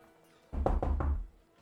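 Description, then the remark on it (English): Three quick, heavy knocks on a door, the bottom door on the next floor down, in a steady rhythm, fairly loud, with a dull, booming low thud to each blow and no voices. “I'm gonna go down to the next floor then and bang on that one, the bottom one.”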